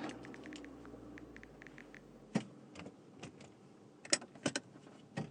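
car interior

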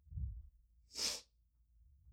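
sniffle

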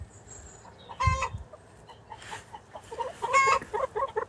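chickens clucking

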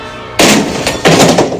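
door being broken open

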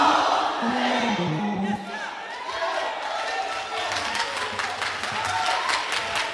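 audience screaming and cheering

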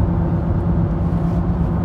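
inside a car

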